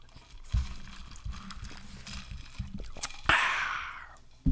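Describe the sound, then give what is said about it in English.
A single sharp sneeze bursts out, its hissy breath trailing off over about a second, after soft low thumps and handling noises. “That's the ASMR segment brought to you by … Sneezes”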